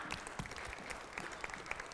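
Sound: audience applause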